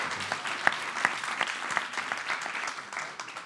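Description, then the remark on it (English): A round of applause from a church audience after a baptism: steady, dense clapping with a few sharper claps standing out, sustained for several seconds at moderate level. “Let's give him a really big round of applause.”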